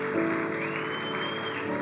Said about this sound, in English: Give God a round of applause. Dale a Dios un fuerte aplauso.